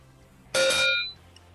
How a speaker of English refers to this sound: That was a double cowbell.